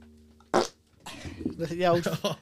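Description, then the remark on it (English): A short, loud fart bursts out close to the microphone after a brief quiet moment, followed by people talking and reacting over it. “the old fart”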